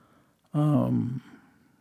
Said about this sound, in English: Let me clear my throat again and dive in to this.